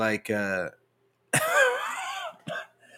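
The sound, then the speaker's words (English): A raspy throat clearing and a few sharp coughs in short bursts, with brief pauses between them and no talking. “I told you I'm still trying to get over this cough”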